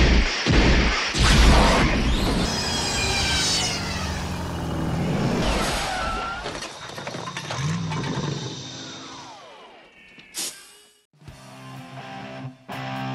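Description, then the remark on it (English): A time machine travel sound effect: a loud, swirling rush of rumbling roars and warbling tones sweeping up and down, ending with a sharp burst and a buzzing electronic hum. “All right, we're going to head back in the time machine and go back to the present day.”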